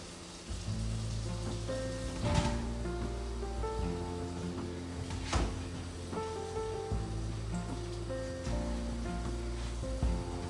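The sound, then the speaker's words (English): Kitchen tap water runs steadily over a strainer in the sink, a continuous hiss and splatter with a few brief louder gushes, and faint tonal sounds humming in the background. “So I'm gonna turn the water on, and I still have my strainer in the sink from when I did my spaghetti.”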